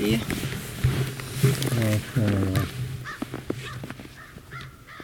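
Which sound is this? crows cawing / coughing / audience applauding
crows cawing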